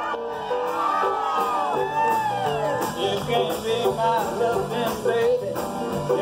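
A muffled, lo-fi cell phone recording of an 82nd birthday live concert, dominated by a loud, continuous wash of crowd noise with whoops, shouts and cheers rising and falling throughout.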